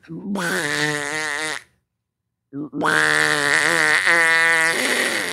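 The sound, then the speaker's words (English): A person imitates a duck with two long, nasal, buzzy quacking sounds separated by a brief silence, the second drawn out and wavering in pitch. “And when I put it in your ear, I need you to make duck sounds.”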